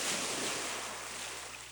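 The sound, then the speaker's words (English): Ocean surf washes steadily onto the shore in a continuous hissing roar, fairly loud, easing slightly toward the end with no voices. “I've been sitting here watching the ocean.”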